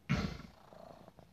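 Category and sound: animal, cat purring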